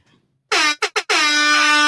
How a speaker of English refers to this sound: Let me get back to my air horn.